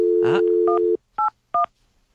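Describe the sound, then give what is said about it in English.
A steady phone dial tone gives way to three short touch-tone beeps, each a crisp electronic double pitch, pressed in quick succession as a number is dialed. “Well, some lucky listeners about to be made very happy if they answer the phone correctly.”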